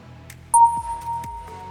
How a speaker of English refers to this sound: Okay, so when you hear the beep, please shout out your team names.